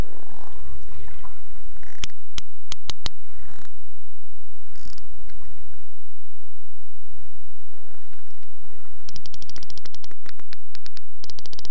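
Sperm whale coda clicks recorded underwater with a hydrophone thrown from a boat: a handful of sharp, spaced clicks, then a rapid, evenly paced burst near the end, over a low, murky rumble of water noise; the whale makes the clicks by pushing air through its big hollow head.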